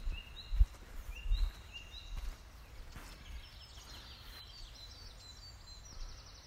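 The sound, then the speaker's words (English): Several birds sing and chirp outdoors in a nature reserve in the morning, a dawn chorus of thin whistled phrases overlapping throughout, with soft thudding footsteps near the start. “Celebrating the Dawn Chorus of Birdsong”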